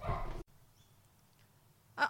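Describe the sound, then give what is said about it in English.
A female dog barks loudly and sharply at a passerby walking past the house, a burst at the start, then a quiet pause before one more short bark near the end. “Anyway, that's why we've never missed a delivery since we've got that dog.”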